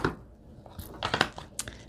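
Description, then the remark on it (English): Crisp crinkling of small pieces of light paper being handled to glue onto an artwork, a few quick irregular bursts of rustle and crackle with brief pauses between, fairly quiet and with no voices. “What about these little pieces of paper? Maybe they need to be on here.”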